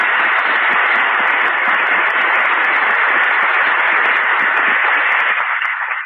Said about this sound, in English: Why don't you just give him applause?